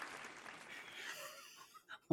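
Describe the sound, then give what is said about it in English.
A crowd's applause, a dense, crackling wash of clapping that gradually thins and fades out, followed by a brief vocal sound at the very end. “I could not hear you over the applause.”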